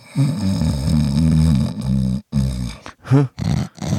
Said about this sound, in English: It's funny. I think you snoring made me snore.